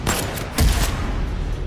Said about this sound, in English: A few minutes later, gunshots.